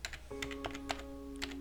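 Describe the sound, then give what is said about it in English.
Slow, uneven typing on a computer keyboard as Emma Stone types in her codes in a dark room lit only by the blue screen: a handful of crisp key clicks spaced irregularly, over a steady low electronic hum with a faint tonal whine from about a third of the way in. “The light casts soft shadows across her stone flesh as she begins to slowly type in her codes.”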